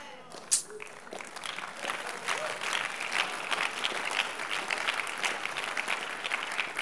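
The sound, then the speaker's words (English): An audience at a sermon breaks into applause: after a single sharp clap, many hands join in a dense, crackling roar of clapping that holds at a steady, fairly loud level for several seconds. “When you clap, your favor will increase.”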